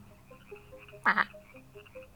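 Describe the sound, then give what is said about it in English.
A single frog-like croak made of two quick raspy pulses, loud against an otherwise quiet background with faint chirpy ambience. “He kind of like croaks and nuzzled up, like up your arm and under your shoulder.”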